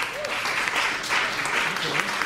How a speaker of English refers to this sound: All right, can we do a noise poll? How many have tried the hemp drinks that are available in Iowa? Let's hear your applause.